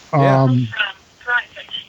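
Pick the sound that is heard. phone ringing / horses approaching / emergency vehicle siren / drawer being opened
phone ringing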